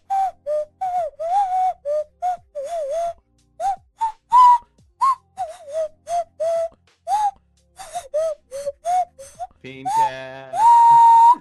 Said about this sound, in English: Dude, it is so hard to blow your nose that quickly and get it to actually make a noise. I don't understand the complexities of the nose flute.